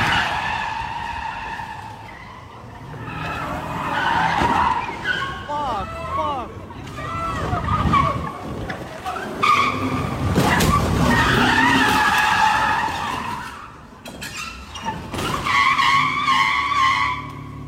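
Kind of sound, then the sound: vehicle, car ramming another car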